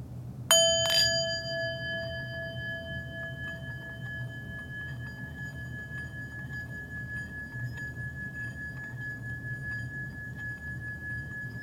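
A singing bowl is struck twice in quick succession, then its bright metallic tone rings on steadily for many seconds, slowly sustaining over a low, soft background hum.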